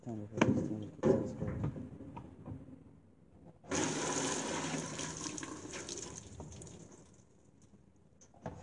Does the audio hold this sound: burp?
no